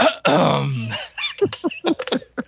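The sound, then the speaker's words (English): A man loudly clears his throat, starting with a long, raspy, growling rumble and ending in a quick series of short, choppy vocal bursts, alone. “Or his throat clearing.”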